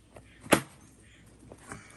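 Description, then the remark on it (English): A plastic bucket cracks underfoot with one sharp, loud snap, followed by a few fainter crunches and creaks as the broken pieces shift. Nobody speaks. “That was a bucket, and now it's a broken bucket.”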